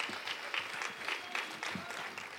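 Steady audience applause in honour of one of their technicians, many hands clapping in a dense, continuous patter at a fairly even loudness throughout, with no voices standing out.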